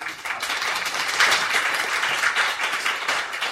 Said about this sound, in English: I assume you are applauding